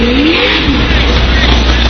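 A truck engine revs hard as it accelerates off the start in a timed drill competition, its pitch sweeping upward in the first second before settling into a loud, steady roar with broad rushing noise.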